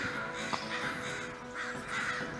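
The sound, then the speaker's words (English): Several raven caws ring out in repeated harsh bursts over a steady murky background rumble, the calls fairly loud, with no talking. “These ravens.”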